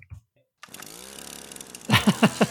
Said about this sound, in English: Now okay. Let's now play a weed whacker.